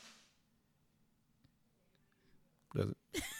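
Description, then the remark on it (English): Someone blows their nose: two short, loud, honking bursts in quick succession after a stretch of near silence. “Does that mean he's blowing her nose?”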